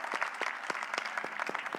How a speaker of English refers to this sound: Yes, you can clap. You can clap.